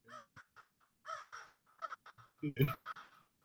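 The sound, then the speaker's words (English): A person imitates crow caws with their voice, a series of harsh, nasal calls in uneven bursts, fairly loud, building to a louder squawk near the end. “Wait, should I do some, yeah, some crows?”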